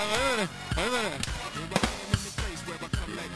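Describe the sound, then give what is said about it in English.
Sharp slapping hits crack out several times at an irregular pace behind a melodic voice, each one brief and fairly loud against the continuous vocal sound. “Hear the slaps in the back?”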